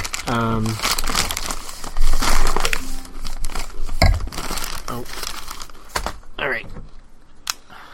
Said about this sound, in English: Yeah, we should probably not keep our eating to a minimum. I'll try to crunch away from the microphone.